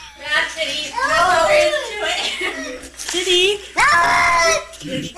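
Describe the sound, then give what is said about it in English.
A cat yowls loudly while being bathed, producing a long, wavering wail followed by two more drawn-out cries, each bending up and down in pitch, with splashing-like noise underneath. “So here's sound of a cat trying to not take a bath.”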